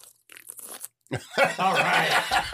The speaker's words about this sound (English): Now you got to do a satisfying sip.